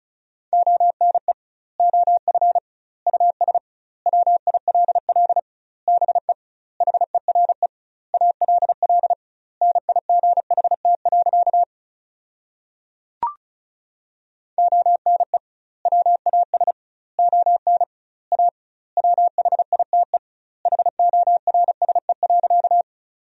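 Rapid Morse code at 35 words per minute with doubled word spacing, sending sentences built from the 300 most common words, as a steady mid-pitched beeping tone, fast dots and dashes grouped into words with gaps between, broken by a brief click midway, with no voices.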